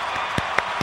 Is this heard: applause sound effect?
yes